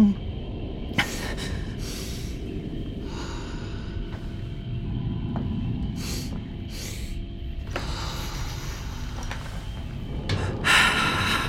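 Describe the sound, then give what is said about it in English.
Heavy, ragged breathing, with sharp gasping inhales and breathy exhales coming in uneven bursts every second or two over a low background rumble. “Okay, try to match my breathing, okay?”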